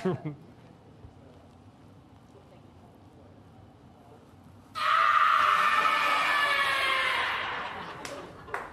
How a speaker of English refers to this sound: Now please play the scream.